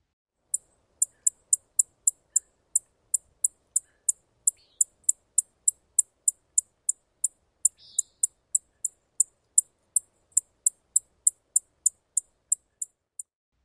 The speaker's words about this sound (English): Okay, are we ready for call notes? Here we go. Chipping sparrows give a high, sharp chip.